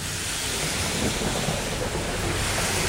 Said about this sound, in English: Noticing the power behind each raindrop, the rivers that flow in front of me